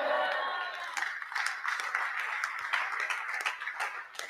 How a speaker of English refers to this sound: These people, I see God blessing you because your clapping is very good. And the choir too, they are joining.